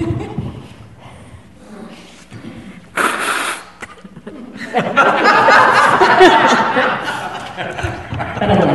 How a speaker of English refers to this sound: I have to put this down so I can blow my nose.